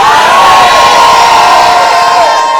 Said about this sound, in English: We are shouting glory. Glory doesn't mean change your style. It means shout glory.